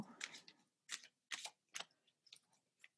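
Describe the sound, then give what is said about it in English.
A deck of cards being shuffled, with a series of crisp, papery riffles and snaps in uneven bursts, separated by brief quiet gaps. No voices are heard. “A shuffling we will go.”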